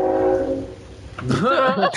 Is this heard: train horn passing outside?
yes